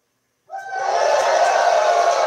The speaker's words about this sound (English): hold on, crowd goes wild.